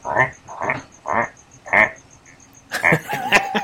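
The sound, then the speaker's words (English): A voice imitates a mechanic's ratchet wrench, used while working underneath a car: four evenly spaced, raspy croaking clicks, followed by a quicker, denser burst of rattling clicks. “He was a mechanic, and he would be underneath his car, and you'd hear the ratchet kind of...”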